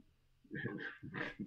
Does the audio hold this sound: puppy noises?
yes